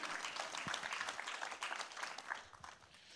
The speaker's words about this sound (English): You can applaud if you want to. It's good preaching.